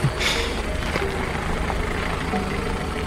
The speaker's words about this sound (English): Yes. I did, in fact, notice a car in front of me on the road slowing to a stop.